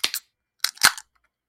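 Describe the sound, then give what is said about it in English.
Cans of Candy Sour, a sour ale from Definitive, cracked open, a sharp pop followed by a short second burst of pops and fizzing hiss, then silence. No one talks over the sounds. “3, 2, 1, crack.”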